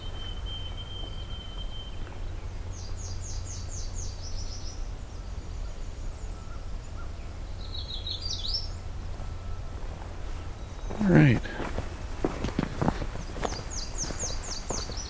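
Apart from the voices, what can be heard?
nashville warbler singing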